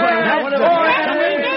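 A crowd cheers and shouts all at once, a dense, steady roar of many overlapping voices that stays loud for the whole stretch without a break.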